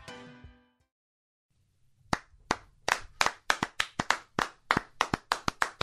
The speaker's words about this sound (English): We might as well both just stand up. It's like a standing ovation. That's basically what it is.